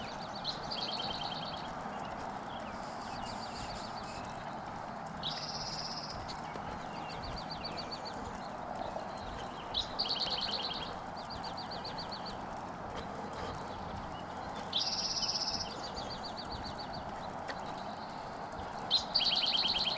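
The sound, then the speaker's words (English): Birds chirp and sing in repeated short bursts of bright, high notes over a steady outdoor hum, some calls clear, others fainter. “The birds seem happy.”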